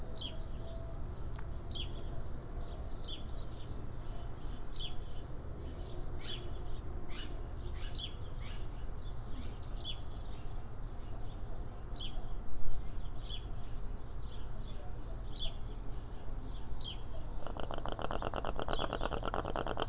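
Birds sing outdoors in a steady stream of short, high chirps and trills over a low background rumble; near the end an air conditioner turns on with a mechanical hum beneath them.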